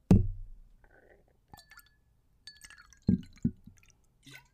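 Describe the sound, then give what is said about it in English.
Riesling wine being poured into a glass for a celebratory toast, heard as a few short splashes and drips with bright glassy ringing between them; no one speaks. “If you hear me pouring some Riesling, it's time to celebrate.”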